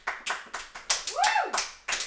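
Sparse, steady clapping from what sounds like a small studio audience at Phillip Island, about four claps per second, with a brief rising-and-falling whistle cutting through midway. No one speaks.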